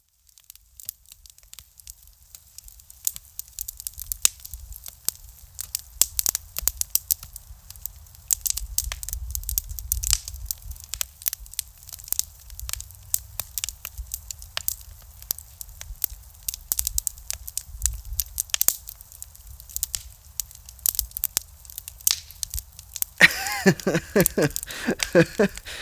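A campfire crackles steadily, with irregular sharp pops and snaps over a low, rumbling roar, close and fairly loud; a voice begins speaking in the final few seconds.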